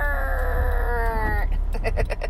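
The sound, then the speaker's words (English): A squeezed toy chicken lets out a long, loud, reedy squawk, then a quick stuttering run of short squeaks, with no one talking. “got a chicken that if you squeeze it, it goes...”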